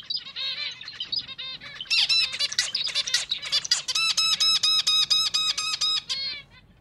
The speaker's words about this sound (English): Zebra finches often mate for life. A big part of the way female zebra finches choose male mates is based on the male's song.